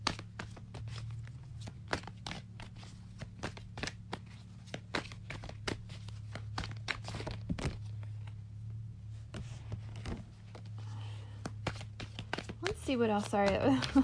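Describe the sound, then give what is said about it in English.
A deck of tarot cards being shuffled, a steady run of sharp, irregular papery snaps and riffles over a low background hum, with a brief murmur near the end. “My brain fart as I was shuffling.”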